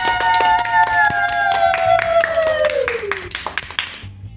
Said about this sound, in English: Let's do one big round of applause for everyone who joined in. Well done, everyone.